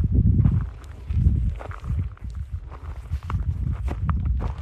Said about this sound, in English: So you can hear, there is the crunch of the stones beneath my feet on this trail.